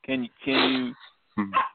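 A dog barks three times, loud, harmonic woofs in quick succession, the middle bark longer than the others, with a brief pause before the final one.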